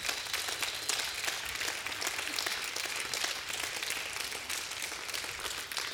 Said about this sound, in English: Would you stand with me and give the Lord a great hand clap of praise this morning? Can you do that?